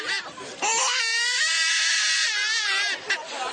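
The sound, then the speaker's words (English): A loud, buzzy vuvuzela blast holds one blaring note for about two and a half seconds, its pitch wobbling slightly, with a shorter honk after it and no talking. “How important is it to be blowing that vuvuzela in a stadium when your team is playing?”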